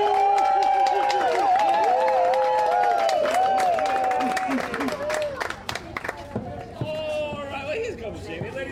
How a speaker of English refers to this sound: The applause to start the show off, right?